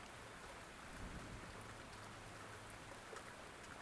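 Steady rain pours down in a dense, even hiss spread across the whole range, with faint patters of drops and a low rumble underneath. No one speaks.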